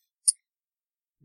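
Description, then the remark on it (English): One quick, crisp click of six-sided dice knocking together, fairly bright, followed by silence and a faint low rumble right at the end. “This is like one of those packs of like 12 six-sided die all in a thing. So disappointed in my dice.”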